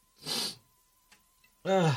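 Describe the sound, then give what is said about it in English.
Sniffling into a microphone: a loud, breathy sniff, a short quiet pause with a faint click, then a tremulous whimpering noise. No words are spoken. “Transsexual sniffling into a mic.”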